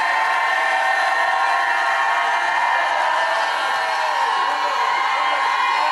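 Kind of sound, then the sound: crowd, audience shouting and cheering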